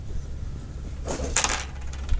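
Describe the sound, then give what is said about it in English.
A short clatter of dice tumbling across a hard tabletop, with a quick burst of rattling clicks that settles within about half a second over a faint low background hum. “So that's 4. Go for it. I have 1. All right, so roll the 5.”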